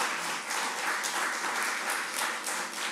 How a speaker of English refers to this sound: Let's give a round of applause to the Lord. Let's just do it, okay?